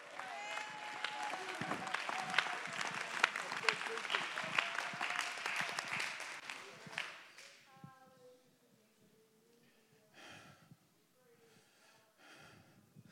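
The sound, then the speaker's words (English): A church audience claps hands to give praise to God in a dense, sustained burst of applause for about seven seconds, then it fades into scattered voices and murmuring with a few stray claps. “Somebody in the back, go ahead and clap your hands and give God.”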